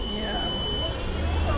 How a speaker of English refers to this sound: some sort of alarm. I think we'll be all right. Might be a car alarm of sorts.